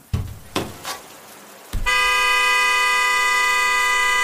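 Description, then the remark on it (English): A few sharp thumps and clatters as a car door is thrown open, then a fist slams into the car horn, which blares loudly and steadily for over two seconds, its bright, buzzy tone holding at constant volume until the end. “Before my better judgment had a second to catch up with my body, I had already thrown open my car door, taken a step out, and slammed my fist into the horn.”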